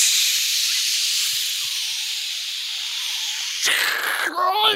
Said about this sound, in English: luckily at the last minute, John Chu and Zoe Saldana, and they've got the spray. Yeah. And they unleash it